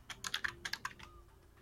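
A quick flurry of computer keyboard and mouse clicks as someone clicks rest on several character sheets, about eight sharp taps in an uneven burst, then a quiet tail with faint room hum and no talking.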